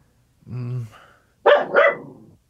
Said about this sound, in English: Oh, it's just a dog. We're good.